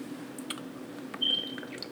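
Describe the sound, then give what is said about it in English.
Someone drinks water: quiet wet sips and small swallowing clicks, with a brief squeaky gulp near the end, all soft over a low background hum and no talking. “I have to drink some water after that one, because I'm gonna say this and I'm gonna be done.”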